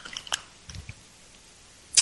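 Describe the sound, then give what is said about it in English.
Someone takes a quiet sip of tea, with soft wet mouth sounds and a couple of faint clicks, with no talking, ending in a brief sharper slurp. “So, just to take a sip of my tea here.”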